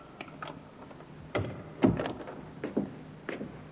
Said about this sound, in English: The door, Inspector. I heard it, Sergeant.